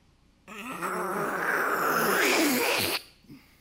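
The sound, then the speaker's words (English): A person vocally imitates a strange noise heard from a bathroom, like a mixture of a hissing cat and a dying bird: a raspy, breathy hiss blended with a strained, wavering squawk, held loudly for about two and a half seconds before cutting off abruptly. “To me, it sounded like the mixture between a hissing cat and a dying bird.”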